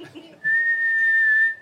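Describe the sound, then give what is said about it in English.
A single long, shrill whistle held steady for about a second, sounding like someone's mouth imitating a lifeguard's whistle, after a brief murmur of voice. “I like swimming, but sometimes the swimming pool will have too many rules and the lifeguard will be really intense with their whistle.”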